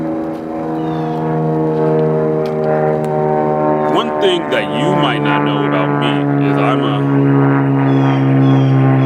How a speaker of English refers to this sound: Wait for this plane to go by.